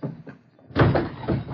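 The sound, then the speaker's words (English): After a brief hush, a table is knocked over in a room with a loud wooden crash, followed by a clattering, rumbling tumble that continues to the end. “How about spilling this table?”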